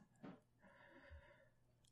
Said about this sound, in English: Oh. I hear a panting.